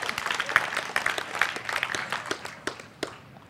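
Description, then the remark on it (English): An audience applauds together to give the Lord a hand, a dense stretch of many hands clapping at once at moderate volume, the clapping holding steady for a few seconds before thinning toward the end. “Give the Lord a hand.”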